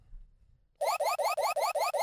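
After a brief silence, a loud electronic alarm from the video game Super Metroid starts: a fast, steady run of identical rising, buzzy chirps repeating about five times a second, with no voices.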